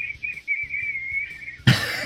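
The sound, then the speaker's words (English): A person whistles one long, high, fairly steady note with a slight waver, over faint low rumbling. It cuts off abruptly into a sudden burst of noise, like a cough. “I can hear you, and you're whistling away.”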